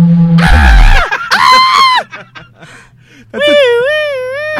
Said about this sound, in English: This woman's screaming right here. Yeah, she's a lunatic.